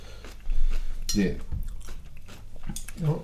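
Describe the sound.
Mild, fresh, crunchy kimchi being chewed on its own: a few moist, crisp bites with soft squishy mouth sounds, fairly quiet and irregular, with faint voice-like sounds mixed in.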